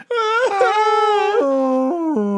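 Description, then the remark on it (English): A human voice imitates a banshee's long, mournful wail, a sustained crying tone that starts higher and drops in a few sliding steps, loud, about two seconds with no other sounds. “No, it would be like a wail, like you're crying.”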